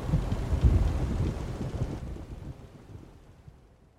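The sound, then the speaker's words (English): A stormy outdoor scene of rain and gusting wind with a deep rolling rumble of thunder, loudest at first and then gradually fading away. No one speaks. “Storms are coming, boys. Best batten down the hatches.”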